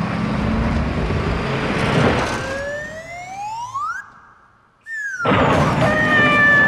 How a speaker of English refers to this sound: Although they went a step too far with the whole car jump with the slide whistle. Let me point that out.